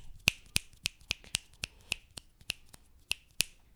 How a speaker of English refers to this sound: You snap your fingers.